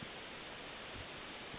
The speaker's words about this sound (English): Why is George just hissing at me? It's like there's a snake on the line.